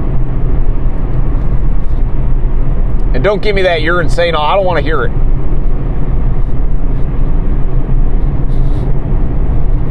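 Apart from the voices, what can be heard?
inside a car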